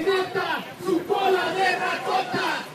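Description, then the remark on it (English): A crowd shouts together at a political rally in downtown Los Angeles concerning Mexico's PRI party, many raised voices blending into a loud, continuous, chant-like roar with rising and falling surges throughout. “Peña Nieto is running as a new PRI, but this crowd in downtown L.A. was still focused on the one they remember.”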